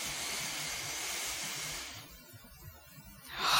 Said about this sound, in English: Hold the in-breath when you breathe in from the belly, breathing, filling the belly.